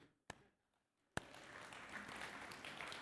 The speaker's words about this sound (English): You can clap.